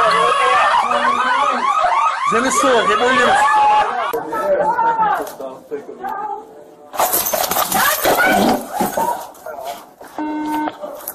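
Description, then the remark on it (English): A loud, rapidly warbling electronic grocery store alarm wails up and down for several seconds, then gives way to harsh noisy bursts and raised voices in a chaotic scene of a shooting with police officers, bullets flying and a woman screaming. “That bitch screaming, I got bullets whizzing by me, and now an alarm. Why does a grocery store have that type of alarm?”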